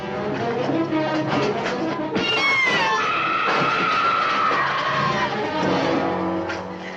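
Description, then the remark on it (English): A Martian creature scream sound effect by Ben Burtt, made from dry ice scraping over metal layered with a reversed woman's scream: shrill, screeching, wavering sliding pitch, layered squealing tones over a grating, scraping texture, loud and continuous for several seconds with no talking. “It's dry ice scraping over metal, and then the reverse of a woman screaming layered on top of each other.”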